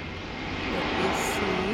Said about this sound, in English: I'll give you a time while the airplane goes over.